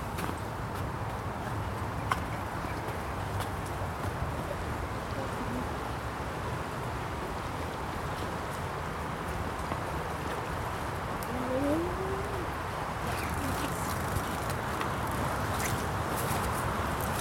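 Footsteps echo steadily through a railway underpass tunnel on the way to Nuttall Park, heading towards the bank of the River Irwell, their hollow clatter carried over a constant rushing background hum.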